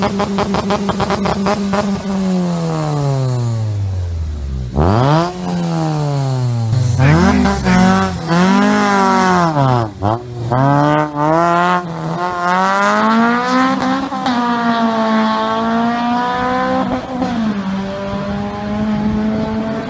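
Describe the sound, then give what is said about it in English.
A high-pitched rotary engine in a car revs repeatedly, its tone sweeping sharply up and down through several hard throttle blips before settling into a steady, buzzing drone, loud with no talking. “Is that a battle? A rotary? A rotary.”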